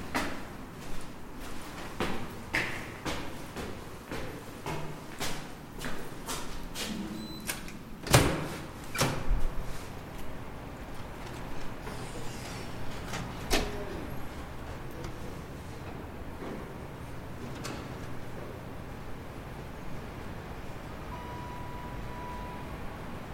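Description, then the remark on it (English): Doors opening and clacking at a building entrance with security systems: a string of sharp clicks and knocks, one louder bang midway, then quieter clunks over a steady low hum, with no talking. “and in particular spaces where one enters and exits, those doors and clacking and security systems.”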